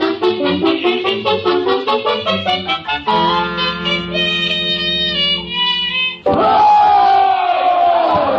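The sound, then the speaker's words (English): A loud rally crowd chants in a rhythmic, pulsing cadence, holds a long sustained shout, then erupts into a roaring wave of cheering for the final couple of seconds. “Oh, Chicken, ain't this some rally?”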